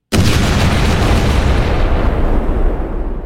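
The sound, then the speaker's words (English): A single loud explosion sound effect, played as a drop, bursts in abruptly, then rumbles on with a heavy, crackling low-end roar that slowly tapers off over a few seconds, with no voices present. “I'm going to play a drop that nobody's going to hear, or you guys won't hear, but the audience will. It's an explosion.”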